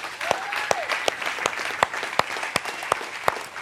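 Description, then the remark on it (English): An audience applauds steadily to honor the fathers on Father's Day, dense clapping filling the whole stretch with sharp individual claps popping out roughly every third of a second, loud and sustained without voices. “We're just going to clap.”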